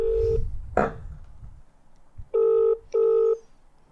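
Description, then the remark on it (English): A brief electronic tone and a click, then a phone line ringing out on a call to a pizza shop, with a steady double ring: two short, clear buzzing tones in quick succession, fairly loud, as if through a handset. “If they don't pick up, I might just leave a voicemail and then we'll call someone else.”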